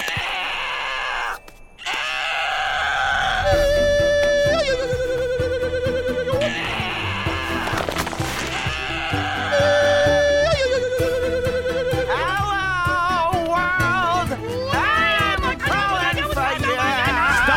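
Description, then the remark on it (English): In a clip from the Angry Birds film, several people imitate Mighty Eagle calls with loud, screechy cries: long held high notes, then quavering, rising and falling shrieks that overlap almost continuously. “Mighty Eagle noises!”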